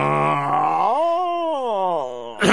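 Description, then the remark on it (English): A voice imitates a worm with a long, droning groan that rises in pitch, holds, then sinks back down, ending in a short breathy burst. “Oh, that's my impression of a worm.”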